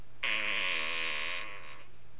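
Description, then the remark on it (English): A single drawn-out, buzzing fart sound effect lasting over a second, loud, with a flapping, tonal rasp that trails off; no one talks over it. “That was a salute for, yes, you can fart anywhere you want to fart because you're amazing.”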